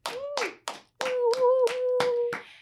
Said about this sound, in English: This year, 2019, of our 12 films, 11 were directed by women. What? That deserves a little bit of applause, I think. Wow.